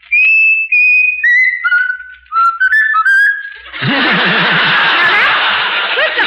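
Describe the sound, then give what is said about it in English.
A person whistles a short melody, the tune of a song, in clear, sustained notes that step up and down in pitch. Loud, noisy laughter then takes over and runs to the end. “you're going to whistle. You're going to whistle ….”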